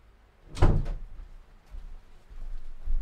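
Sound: door being closed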